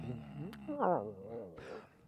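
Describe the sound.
During a script reading, a person imitates Lizzie, a sleeping dog being petted by the fireplace, with a low, wavering whimper-groan that rises and dips in pitch, then ends in a soft, breathy huff, all in about two seconds.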